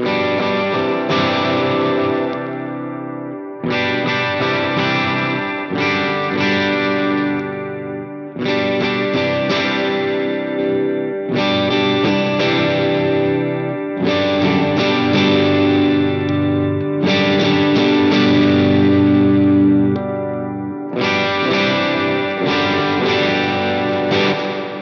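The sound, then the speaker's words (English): Electric guitar on the bridge pickup played through a reverb pedal on its Spurgeon Hall setting, strummed chords ringing out in about eight sustained phrases, bright and loud, with lush hall-like reverb tails and no talking. “I'm gonna go back to the bridge pickup, slap on some Spurgeon Hall.”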